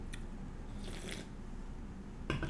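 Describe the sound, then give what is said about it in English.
Quiet sipping of beer: a soft slurp followed by small wet mouth and swallowing noises, with a brief louder click near the end and no talking. “Let me take a sip of beer.”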